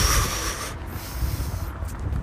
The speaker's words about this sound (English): Deep breaths.